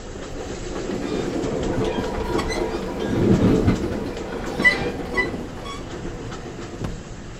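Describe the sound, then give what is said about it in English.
A passenger train rolls steadily along the rails with a continuous low rumble, a swell of louder rolling noise midway, and faint rhythmic clicks and metallic squeaks from the wheels. “Well, these days on this train, there's more clicking of laptop computers and cell phones ringing.”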